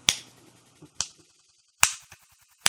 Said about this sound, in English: From inside the room, you hear a condescending clap.